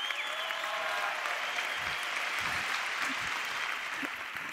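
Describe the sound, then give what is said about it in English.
A crowd of self-described nerds applauds steadily, a dense wash of many hands clapping at once with a few scattered whoops. It holds at an even, loud level throughout and no one speaks over it. “Clap it up if you're a fucking nerd.”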